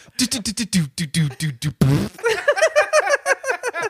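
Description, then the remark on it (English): A quick run of voiced, drum-roll-like pulses gives way to a short, buzzy fart sound, then choppy laughter follows. The drum roll sounds mouth-made, and the fart may be vocal too. “a guy doing a drum roll and then farting.”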